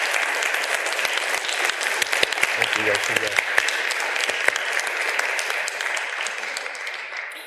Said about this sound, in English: Folks, please give him a round of applause. Thank you.